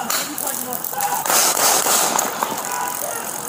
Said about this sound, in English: Wow. So you can hear the shooting there.